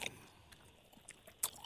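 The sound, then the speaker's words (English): Several people chewing, with scattered wet smacks and crunchy clicks at an uneven pace and one sharper smack near the end. Nobody speaks. “Also, I'm just going to be quiet right now and just let the sweet sounds of y'all chewing, okay?”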